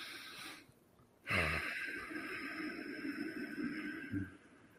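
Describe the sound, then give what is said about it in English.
A slow, deep breath is drawn in and let out, with a soft airy rush rising to a sustained whoosh, no talking over it. “Exhaling and then slowly again breathing in and taking a nice slow deep breath in, and you feel the energy of Divine Grace coming in, what we call nafas ar-rahmah, the breath of the merciful.”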